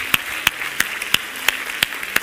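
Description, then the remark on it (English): An audience claps their hands to the Lord in praise, in a steady rhythm, about three sharp, loud claps per second in unison over a dense wash of scattered clapping, with no voices. “Clap your hands to the Lord and give him praise before you're seated.”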